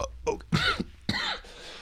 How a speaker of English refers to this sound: Oh. Folks, I'm so sorry for all the coughing. We are getting a cough button.